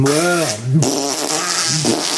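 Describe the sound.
A voice makes a drawn-out, buzzy raspberry imitating a fart, fairly loud, with the pitch wobbling up and down across about two seconds. No one speaks.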